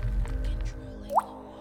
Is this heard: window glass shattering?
no